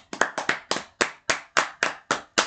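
A brief burst of clapping: about ten sharp, crisp hand claps in a steady, even rhythm, fairly loud and with no voices.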